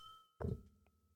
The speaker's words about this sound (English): Well, you know what? Let's cheers.